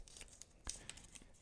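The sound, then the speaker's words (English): A slip of paper is pulled out of the rear end of a goat figure and unfolded, giving a quick run of crisp crinkles and rustles with a few sharper crackles, fairly quiet and without any talking. “I've got a piece of paper out the ass of this animal, and it says...”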